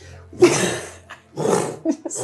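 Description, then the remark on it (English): A person voices the bellowing roar of a Dracolich: a long, raspy bellow followed by a second shorter growling burst and a few rough trailing grunts. “It lands in amongst all of you. And lets out this bellowing roar.”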